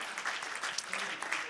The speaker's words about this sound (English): Would you clap your hands with me? Thank you, Lord Jesus. Amen.